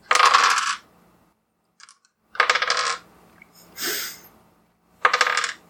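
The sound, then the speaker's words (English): Several loud bursts of many dice clattering and rattling across a hard tabletop during a game, each lasting under a second with short pauses between, with no talking. “No, I hear lots of dice.”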